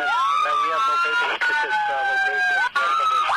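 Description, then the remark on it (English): A responding unit's wailing emergency siren rises and falls continuously, heard through a compressed Denver emergency radio channel with brief dropouts, while a voice talks underneath it. “Denver TAC 37, I could not hear you over your sirens.”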